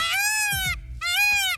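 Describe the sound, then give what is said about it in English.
A peacock's screaming call sounds twice: two loud, harsh, nasal cries, each under a second long, with a brief gap between them and a slight downward slide in pitch. “Have you ever heard one of those things? They're god-awful.”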